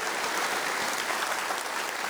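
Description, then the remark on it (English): A church audience claps for the Lord after a prayer, in a steady, dense wash of applause, many hands blending into a continuous crackling roar that holds an even loudness throughout. “Can we give the Lord a clap, please?”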